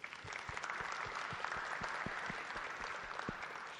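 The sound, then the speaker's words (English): A quick round of applause from an audience welcoming two guest speakers: steady dense clapping with many overlapping claps at an even level throughout, no voices standing out. “So let's give them a quick round of applause.”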